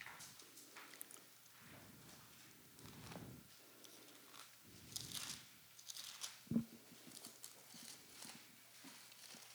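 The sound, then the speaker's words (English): Soft, scattered rustling and flapping of Bible pages as many people turn to Mark 16 at once, irregular overlapping swishes with no one speaking. “I love to hear those pages turn.”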